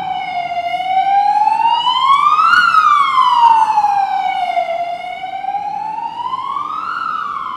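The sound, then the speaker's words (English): A loud emergency siren wails in slow rising and falling sweeps, steady, with a low traffic rumble underneath and no voices. “Well may the sirens blare, we are in danger.”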